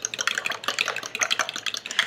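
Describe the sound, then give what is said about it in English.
A whisk beats quickly against the side of a bowl, mixing wet ingredients with baking soda and vanilla for cornbread, making a fast, steady run of wet clicking and scraping taps, moderately loud, with no one talking. “And then I'll just whisk this together.”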